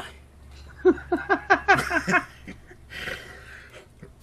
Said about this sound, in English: Excuse me. Sorry. Cough.